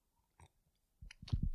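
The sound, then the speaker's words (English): Tea being sipped: one short, soft slurp, a brief pause, then a quick run of louder, wet slurping and swallowing sounds. No one speaks. “Tea sip. Give me a sec.”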